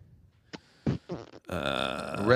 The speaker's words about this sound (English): By the way, that was my mouth. I didn't fart.